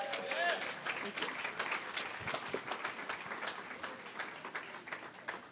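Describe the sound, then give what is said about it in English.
Sustained audience applause as the next speaker is invited up for the closing, dense overlapping claps at a steady loud level throughout, with faint voices briefly audible early on. “Can you give a round of applause for”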